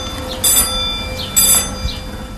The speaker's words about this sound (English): Well, that is the bell that alerts people in the gas station that someone has just pulled in. There's a little hose that runs across the pavement, across the pumps.